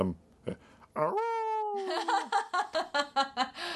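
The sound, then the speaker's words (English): A person imitates the howl of the character Count Floyd from the Ed Grimley cartoon, a long sustained wavering note lasting about a second, then breaks into rhythmic bursts of laughter. “So he would howl every time he got stuck.”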